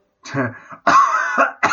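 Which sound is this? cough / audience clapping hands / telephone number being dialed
cough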